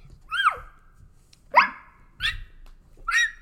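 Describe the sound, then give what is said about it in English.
A voice imitates a young dog's "big girl bark", giving four separate yelpy barks spaced about a second apart, clear, with no talking. “And does she find her big girl bark?”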